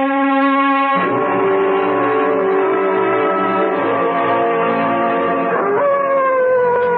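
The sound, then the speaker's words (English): A dog, old Whiskey, howls loudly and continuously for several seconds, its long mournful tone shifting pitch a few times, with no talking over it. “What the devil is the matter with that dog, Chadsworth?”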